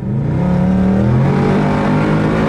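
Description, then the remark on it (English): A car engine hums steadily at low revs, about 1600 RPM while cruising at 100 in 10th gear, a smooth, continuous drone with no one talking over it. “So I'm doing 100, and it's doing just 1600 RPM.”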